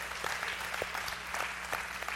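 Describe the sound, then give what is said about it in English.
A church audience claps steadily for the children's ministry, a dense wash of many hands applauding together, with no voices standing out. “We can clap for that.”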